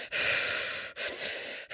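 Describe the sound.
A voice imitates heavy, mechanical-sounding Darth Vader-style breathing: two long, harsh, hissing breaths separated by brief pauses, loud, with a raspy, airy texture and no talking.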